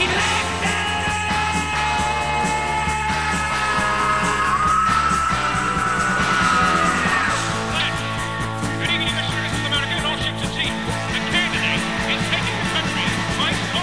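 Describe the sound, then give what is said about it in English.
A rock singer lets out a long, strained scream on the chorus over loud, dense band music, the raw vocal rising and holding for several seconds before the full band drives on. “Listen to this scream here.”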